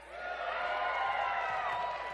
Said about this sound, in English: They're cheering. They're cheerful. They're excited.